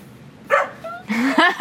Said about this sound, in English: she's like a purple little alpha dog that is just roaming around and barking at everything